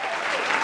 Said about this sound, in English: You got to give him give him a clap right there.